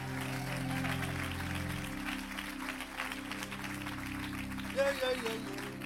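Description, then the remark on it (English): A church audience gives God a hand clap, clapping steadily in a dense, continuous wash of hand claps, with sustained low organ-like tones holding underneath and a brief voice or tone rising near the end. “If you're going to clap, give God a good hand clap today.”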